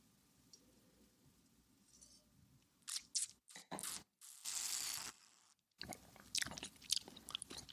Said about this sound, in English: And I'm going to take another sip before too long, because I don't think this is going to be a really long podcast, so I might as well get my drinking in here.